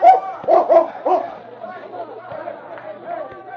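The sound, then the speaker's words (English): A dog, King, barks in a quick run of about four loud yaps after sniffing out a scent by the back door of a cafe, then quieter, muffled sounds and indistinct background chatter continue. “he stopped and barked to indicate he had found the scent.”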